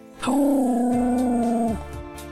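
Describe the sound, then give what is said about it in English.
A dog lets out one odd, drawn-out vocal noise while being played with, a steady howl-like whine held for about a second and a half before dropping off. It's loud, with no talking. “she makes this really weird noise when you play with her, but I don't even know how to, like, make an imitation of it.”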